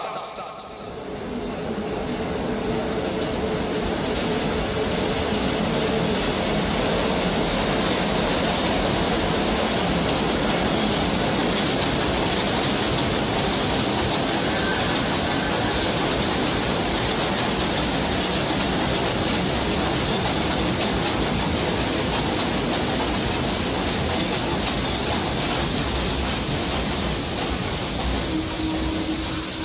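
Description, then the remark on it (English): A Brooklyn-bound 3 express subway train, with New Lots Avenue as the next stop, roars along its rails with a loud, steady rumble and metallic rattle that holds unbroken for the whole stretch. “Brooklyn bound three express train. The next stop is New Lots Avenue.”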